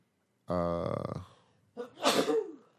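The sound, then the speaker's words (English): A short spoken word is followed by a loud sneeze, a sharp breathy burst that sputters briefly before stopping. “Bless you, dude.”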